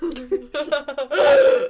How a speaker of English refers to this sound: I had a burp. Sorry. Okay. I had a burp.